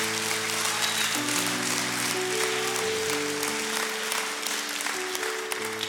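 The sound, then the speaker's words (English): An audience at Pathway Church claps steadily for God for several seconds, a dense, sustained wash of hand claps over held keyboard chords that shift underneath, with no talking. “Somebody give God a hand clap today.”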